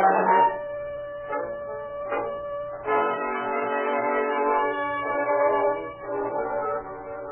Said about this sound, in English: Through the long night, as train after train puffed through the sleeping town, Foley and his men checked every car for suspects, hoping that their quarry had not eluded the net thrown out for him.